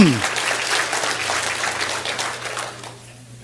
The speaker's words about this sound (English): Give your praise team a good clap. That was good today.